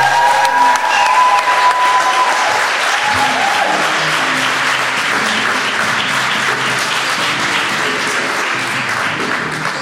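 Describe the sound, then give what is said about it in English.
A big live audience at the Theatre Royal bursts into sustained applause as comedian JB Barrington is introduced, dense rapid clapping with cheers and whoops mixed in, staying loud and steady for about ten seconds. “Ladies and gentlemen, please give it up for JB Barrington!”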